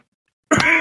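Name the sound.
cough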